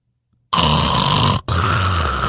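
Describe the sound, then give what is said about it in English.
A computer makes a loud, rasping snoring sound that starts abruptly after a short silence, breaks for a moment, then resumes in a second long, steady, throaty drone with a low rumbling hum underneath. “My computer has got to making a snoring sound.”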